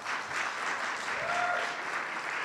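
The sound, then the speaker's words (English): A crowd applauds steadily for guest Phil Plait, known as the Bad Astronomer, a dense wash of many hands clapping at an even, sustained level, with a faint whistle-like tone briefly rising above the clapping. “Let's get a nice big round of applause for Phil Plait, also known as the Bad Astronomer.”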